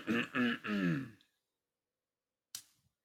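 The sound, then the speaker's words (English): A drawn-out voiced throat-clearing grunt, then a pause and a single short, weak cough, with a faint trailing breath. “I want the cough.”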